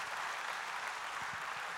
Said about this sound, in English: You can clap right there. I'm going to get you clapping. I'll get you clapping today.